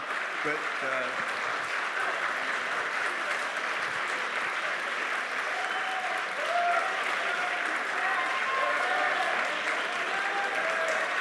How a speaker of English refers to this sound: We don't know who's cheering for who, I guess.